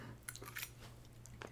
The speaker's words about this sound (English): It's not, once again, it's not bad when it first touches your tongue. It's right. You chewing it, letting it go, and so then swallowing it.